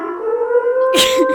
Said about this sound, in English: Social media is a war zone right now, so I think that siren actually fits pretty perfectly because it sounds really ominous.